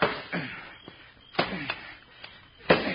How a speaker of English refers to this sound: It's a strong box, all right. I told you it was. Well, open it up. We gotta be sure. Knock the lock off with the shovel. All right, here goes. Now stand back.